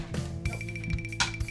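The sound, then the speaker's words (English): Dice rolled for an attack in a D&D game rattle and clack across a table in a handful of sharp, irregular clicks over about a second and a half, with a faint steady hum underneath and no voices. “it was one dice.”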